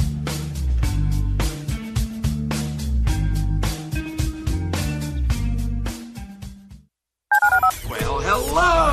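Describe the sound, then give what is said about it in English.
A quick run of touch-tone dialing beeps plays over a loud, driving music bed in a radio listener call-in line promo, followed by a brief silence and then a voice speaking. “To call into the HR&P listener line, dial 713-780-ESPN. Dial the phone.”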